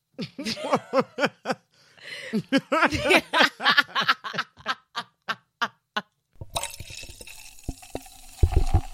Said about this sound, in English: Oh my God, so sorry, guys. I was just enjoying a fizzy drink.